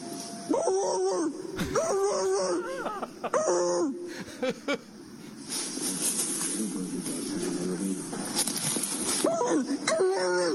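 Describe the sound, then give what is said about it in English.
A deputy barks loudly in imitation of a police dog to scare a suspect, a quick series of harsh, voiced barks, followed by a steady rush of noisy static or wind. “What they did have was a deputy who decided to bark like a dog.”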